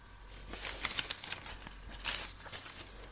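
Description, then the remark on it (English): Quiet rustling and crinkling of paper, a series of soft crisp rustles and rubs as slips of paper with different topics on them are shuffled in a ball cap and one is drawn out, with no talking. “So if you can imagine a ball cap with several slips of paper with different topics on it, we are going to draw one from the hat and see where the conversation goes.”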